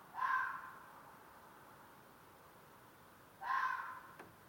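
Two hoarse, drawn-out fox calls, a few seconds apart, each loud and harsh with a slightly wavering pitch, fading off at the end. No talking, only a quiet background hiss between them.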